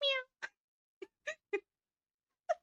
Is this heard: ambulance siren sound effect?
no